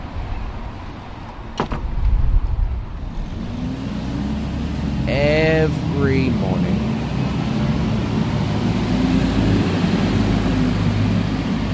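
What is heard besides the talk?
busy city road traffic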